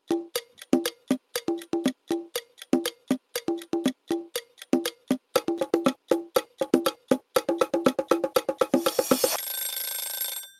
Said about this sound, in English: So this is what your timer's gonna sound like.